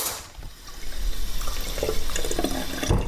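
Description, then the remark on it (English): Cold water runs steadily from a kitchen tap for a few seconds, a continuous splashing hiss with small gurgles near the end and no voices. “Step one is to mix 3 tablespoons of cornstarch and 3 tablespoons of cold water together.”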